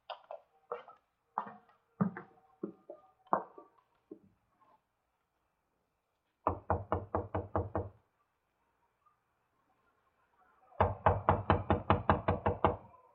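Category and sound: impact, knocking on a door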